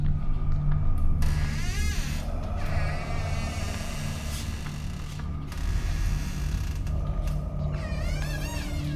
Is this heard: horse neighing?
no